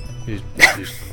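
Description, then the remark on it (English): A dog character in a video game lets out a single short, sharp bark, preceded by a softer whine-like sound over a low background hum. “You've got just a straight up dog.”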